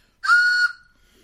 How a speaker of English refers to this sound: A train whistle from Wisconsin sounds different from a train whistle from Illinois. Well, it's a train museum in Wisconsin, so. It might be actually an old whistle. It sounds like a train. That's like one of those all-aboard.